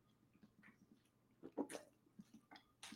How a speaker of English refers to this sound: Oh, sorry for the ugly water drink on the pod, but I had to do it. Oh my God, my throat was going to hell there.